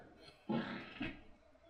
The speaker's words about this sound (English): That wasn't a fart, I swear. It was the chair. It was the chair, I swear. The chair.